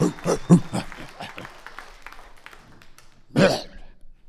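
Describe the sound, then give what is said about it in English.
An audience claps and cheers in loud, uneven bursts that gradually thin out, then one more sharp surge of cheering and whooping breaks out near the end. “Can we have some applause right here?”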